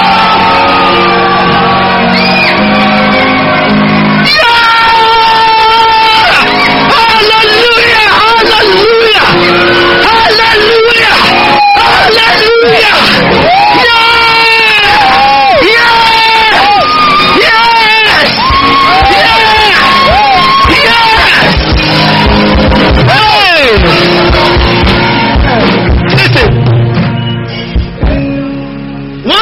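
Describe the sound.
A large crowd of people shouting, screaming and cheering together at full volume, a loud, continuous roar of many voices with rising whoops and yells that lasts throughout.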